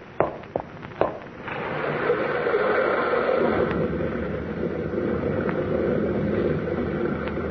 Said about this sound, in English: Huh? What was that, Tom? Sounded like a rock slide.